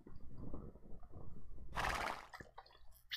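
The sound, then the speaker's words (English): A horse whinnies loudly in a sharp, bright burst midway through, with a steady clopping of hooves and low rumbling movement underneath, as a rider crosses a river on horseback in a video game. “Doc's now riding his horse across the river”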